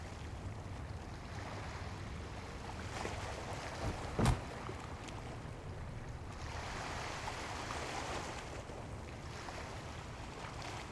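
Water laps and sloshes steadily against empty harbor docks with no ships, with one sharp wooden knock partway through. The wash stays constant and moderately quiet, and no one speaks.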